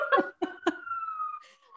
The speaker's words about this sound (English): Hang on. There's sirens again in New York. Everyone, you know.